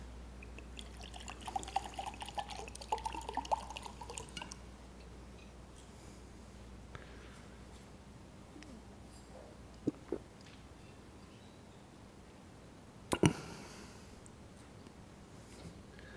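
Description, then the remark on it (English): Quiet liquid sounds of water being poured and sipped from a glass for a few seconds before a meditation session, followed by a long hush broken by a few sharp clinks of the glass being set down. “I'm going to just have a glass of water to make sure that I'm well hydrated.”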